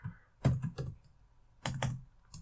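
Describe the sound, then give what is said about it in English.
Keyboard typing of a command to a companion in a text adventure game: two quick bursts of sharp key clicks, a handful of taps each, separated by a short pause, with no voices. “Oh, the command is say to, companion, open window, go west, go southwest, open door.”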